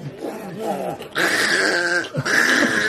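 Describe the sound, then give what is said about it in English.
A person's voice imitates an angry cat spitting and snarling, with wavering snarls and growls mixed with harsh, hissing spits. The loud outbursts run for about three seconds with a brief break near the middle. “As soon as we got in there, she started spitting and snarling.”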